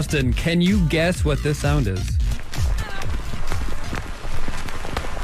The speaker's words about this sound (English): It's rain. Yeah. No. It sounds like rain. No. What is it? Another guess? It's a record player, the vinyl things.